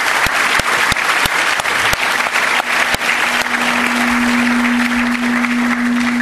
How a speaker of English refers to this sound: So if you don't mind, I know it's a bit in advance, but maybe you just give them a round of applause for all their work.